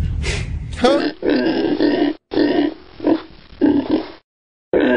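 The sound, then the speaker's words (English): A pig grunts repeatedly in low, rough bursts, several throaty snorts in a row separated by short pauses, fairly loud and with no talking over them. “Did some pig noise?”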